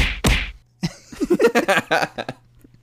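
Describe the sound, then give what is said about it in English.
Three quick, heavy punch sound effects land back to back at the start, loud, followed by a stretch of vocal-sounding noises. “I was hoping you'd do the three punches.”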